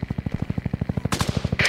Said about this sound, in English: Do you hear that? What is that? They're shooting at the truck!